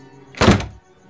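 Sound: door shutting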